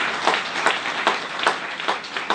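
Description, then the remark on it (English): An audience gives a warm, sustained round of applause one morning to welcome visitors, dense overlapping clapping from many hands going on steadily for a couple of seconds, with no voices rising above it. “In actual fact, to make people feel at home, if you're a visitor here this morning, this warm round of applause is to make you feel at home this morning.”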